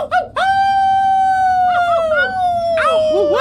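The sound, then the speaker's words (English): Several people howl together like wolves, one long, steady, slowly falling howl held throughout while other wavering howls rise and overlap it, loud. “So you guys start howling.”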